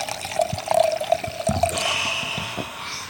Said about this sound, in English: Wait a minute. Let me pour one more